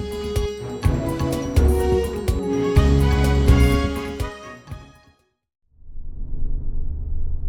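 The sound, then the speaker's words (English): A loud musical sting cuts off into a moment of silence, then a car drives slowly up a driveway with a steady, low engine rumble that continues to the end. “Yes, I believe it's just a bit further down this driveway. Once we're there, we can give the car to the valet and enjoy ourselves a good old-fashioned garden party.”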